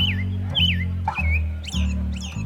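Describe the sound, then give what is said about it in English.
An American robin sings a string of short, clear whistled phrases in quick succession long before sunrise in a U.S. city, over a steady low rumble of city noise. “In cities in the U.S., some American robins put on a show long before sunrise.”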